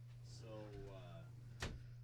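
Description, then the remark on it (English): A glass door is jostled, ending in a single sharp bang against its frame, with a voice murmuring just before and a steady low hum underneath. “You're going to break that glass door.”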